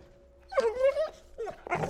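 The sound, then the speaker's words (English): A puppy, not housebroken and shut in a laundry room, whines in high, wavering cries: one long drawn-out whimper, then a shorter falling one, ending in a brief rough yelp. “He starts whining a lot the moment I put him in there.”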